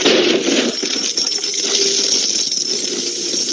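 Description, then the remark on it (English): A steady, loud cascade of gold coins pouring and clinking out of a floor, a dense metallic jingle that continues without pause for several seconds, with no voices. “And all these gold coins come out of the floor.”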